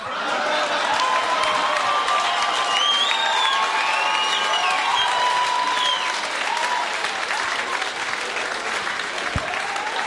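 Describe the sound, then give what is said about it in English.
A large audience at the end of a show claps steadily in a dense, sustained wash of applause for everyone involved in the show, with scattered cheers and whoops rising above it throughout. “Give a round of applause for everyone that was involved in the show, everyone we talked to, all of the acts.”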